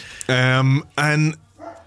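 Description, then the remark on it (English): Dogs bark after someone rang at the door: two loud, drawn-out barks in quick succession, then a softer third one trailing off. “There's the dogs now because someone just rang on the door.”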